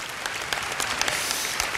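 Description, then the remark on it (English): An audience claps together as a clap offering to the Lord, a steady, dense burst of applause, many hands overlapping into a bright, sustained patter with sharp individual claps standing out, no voices heard. “Somebody give the Lord a clap offering on that.”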